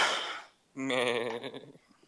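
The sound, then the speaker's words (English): A goat lets out one wavering, nasal bleat lasting about a second, fairly loud, just after a brief breathy hiss. No one speaks. “But he was wearing a jacket with fleece in it, and well, instead of letting him join with an alien on a molecular level, he's a goat.”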